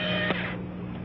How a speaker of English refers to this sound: He uses an electric shaver.